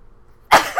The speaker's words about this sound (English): I'm gonna sneeze.